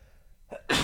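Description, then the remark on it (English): A sharp intake of breath followed by a single loud sneeze that bursts out suddenly after a moment of near silence, with no talking. “I think there is a sneeze coming, maybe.”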